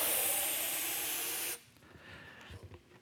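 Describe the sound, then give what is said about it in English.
Air hisses loudly and steadily out of a punctured balloon for about a second and a half, then cuts off abruptly, leaving only faint room noise and a few soft bumps. “Oh, I pulled the one with the hole.”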